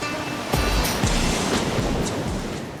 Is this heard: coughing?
no